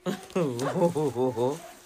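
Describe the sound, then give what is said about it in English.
Voices from a church audience howl and wail in drawn-out, wavering cries, rising and falling in pitch across a couple of loud, emotional bursts. “Y'all hear them over there? That's that church, y'all.”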